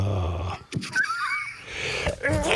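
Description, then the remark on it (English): A single loud, voiced sneeze: a squeaky, wavering drawn-out inhale, then a sharp breathy burst at the end, with no talking. “God bless you.”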